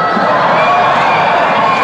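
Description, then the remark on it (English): A large crowd roars with sustained screaming and cheering, loud and dense throughout with no pauses, many voices blending into one continuous wall of excited noise. “You scream, exactly.”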